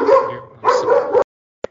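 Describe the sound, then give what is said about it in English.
A dog gives two quick, fairly loud barks, each a short harmonic burst, followed by silence and a faint brief click at the end. “John's dog is even upset that people are getting excited about Rutgers.”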